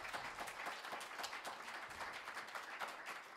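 crowd, audience clapping

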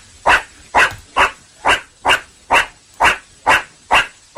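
animal, dog barking

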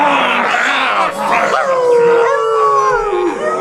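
animal, dog howling

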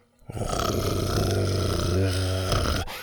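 sound effect, T-Rex growling

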